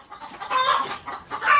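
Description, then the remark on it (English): Several chickens on a farm cluck and squawk in a busy, overlapping chorus while laying eggs, heard through an opened door at the back of a house. The chorus is moderately loud, with bursts of calls rising and falling over a second or two. “My man cave is built on the back of the house, so you can hear the chickens when I open the door.”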